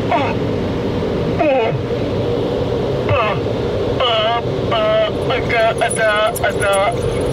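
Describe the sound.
A car wash air dryer blows with a loud, steady, whooshing roar throughout, while people's voices speak and exclaim over the constant rush of air.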